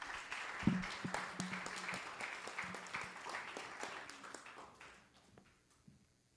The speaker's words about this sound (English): Hey, let's give the worship team a round of applause. Come on.